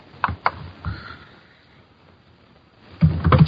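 Keyboard typing as answers are typed during a quiz game: a few sharp, separate key clicks, then a short quiet gap and a quick burst of tapping at the end. No one speaks.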